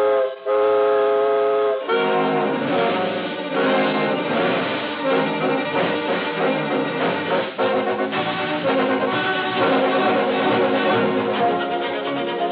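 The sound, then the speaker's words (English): A loud, sustained steam whistle blows for a couple of seconds as a steam train with its steam pressure up sets off, then a dense, churning rush of train sound follows as the engine pulls away, staying loud throughout. “The steam pressure is up, and we're off on the second leg of our swift journey across America on this peace-tide Christmas Eve.”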